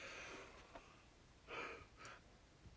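A person yawns, with a long breathy inhale followed by a shorter airy exhale, drawn-out and fairly loud against quiet background noise, with no talking.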